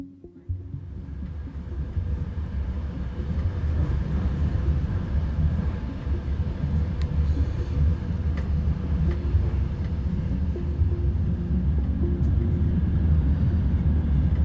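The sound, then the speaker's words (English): A train travelling from Lviv to Kyiv at night rumbles along the tracks, a steady, deep, continuous drone with faint clicks and rattles scattered over it and no voices. “So here we are on the train from Lviv to Kyiv.”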